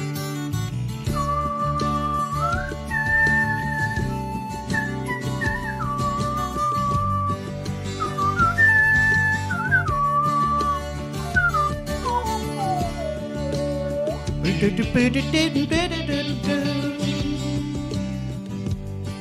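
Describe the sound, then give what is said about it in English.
Someone whistles the flute part of a song, a wavering, sustained melody line with rising and falling phrases, clearly audible over a steady, full-bodied music backing for the whole stretch. “I'm gonna whistle the flute part here.”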